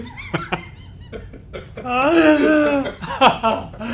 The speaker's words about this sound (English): Stop coughing, microphone. It's so terrible, this microphone.